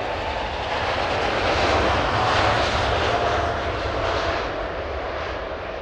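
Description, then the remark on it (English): A steady, loud airplane engine sound effect for a flight back to Toronto drones throughout, a broad roaring hum with a slight swell in the middle, continuous with no voices. “With HBO and CBC on board to co-produce, the kids got on a plane back to Toronto and began putting together their pilot.”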